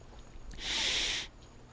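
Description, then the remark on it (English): A single short, airy sip from a drink in a can, lasting about half a second against a quiet background with no talking. “As I take a sip.”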